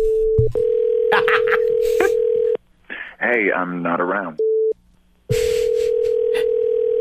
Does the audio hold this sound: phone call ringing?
yes